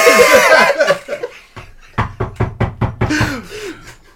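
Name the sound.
knocking on a door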